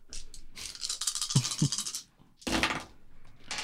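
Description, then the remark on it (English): Dice clatter and rattle in a dense, sharp burst for about two seconds with a couple of heavier knocks, then a second quick clattering roll after a short pause, during a tabletop dice game in which players lose dice. “Haruthax will pull out dice made of bone.”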